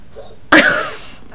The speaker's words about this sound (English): And, oh, Jesus, the cat's coughing up a furball now.